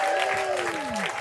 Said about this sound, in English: Please give a round of applause to the panel, you guys.